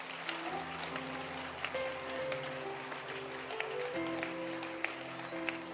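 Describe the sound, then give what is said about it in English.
An audience claps their hands in a dense, steady crackle that lasts throughout, with sustained keyboard or organ chords holding underneath and shifting pitch partway through. “Clap your hands again.”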